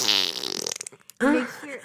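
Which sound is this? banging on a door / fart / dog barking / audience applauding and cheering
fart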